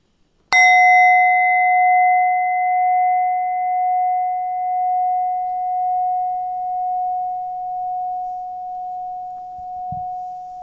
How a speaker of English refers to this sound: But first, let's invite the mindfulness bell. Just close your eyes and feel the bell echo.